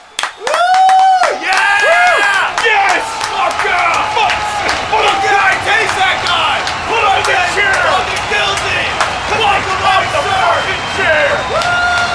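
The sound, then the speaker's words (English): An audience cheers and applauds loudly for about twelve seconds as a helper points along a sign reading loud to quiet to gauge the volume, with high whoops and shouting voices layered over steady clapping that stays strong throughout. “She's going to point by Woo! Everyone's applause.”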